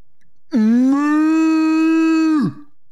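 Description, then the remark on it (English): A single loud, drawn-out cow moo lasting about two seconds, holding a steady pitch before dropping off at the end, heard alone with no talking. “It's the cow.”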